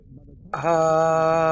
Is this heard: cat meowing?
no